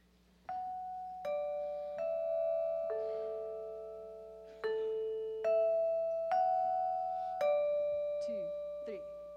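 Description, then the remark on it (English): A doorbell plays a ding-dong chime melody: about eight bright struck tones at shifting pitches, each ringing on and overlapping the next, fairly loud over a low steady hum. “Someone's knocking at the door, somebody's ringing the bell.”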